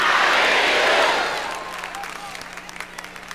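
An audience shouts and cheers in a loud, dense roar for over a second, then the noise fades to a softer murmur with scattered claps and whoops.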